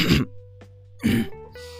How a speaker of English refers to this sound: Let me clear my throat.